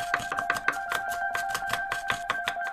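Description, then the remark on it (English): Quick, steady chopping taps of hands held sideways, mimicking chopping a banana, repeat about five times a second. The taps are crisp, over a sustained two-note electronic hum with no talking. “Now let's lay it down and chop it up. Everybody turn your hands sideways and start chopping.”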